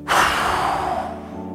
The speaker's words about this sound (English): Take a deep belly breath, fill up your tummy with air like a balloon, and this time hold on to it for a second. Now blow out hard and fast like a powerful wind.